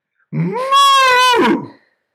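A single loud cow moo sound effect, a drawn-out bellow lasting about a second and a half that swells in pitch and then fades. It plays alone, with no talking.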